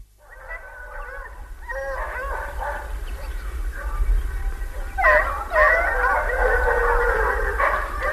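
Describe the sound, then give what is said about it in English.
A hunting hound, while hunting, gives a long, drawn-out baying cry, rising and wavering in repeated tonal bursts over a low rumbling background, growing louder toward the end. “Oh, no, so when the dog is really hunting, he, once he hears the dog is hunting, he's it's, way it's, too it's a long cry, you know.”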